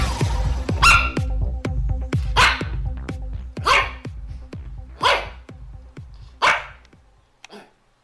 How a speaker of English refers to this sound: You hear that? That is a sign of a dog with flu.